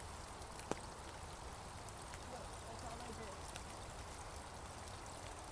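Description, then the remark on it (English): A little waterfall trickles steadily into a small pool with a leaf blockage, making a continuous soft splashing hiss with a few brief drips standing out, fairly quiet, with faint voices in the background. “It's like a little tiny waterfall.”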